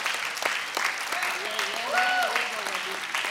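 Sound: audience applauding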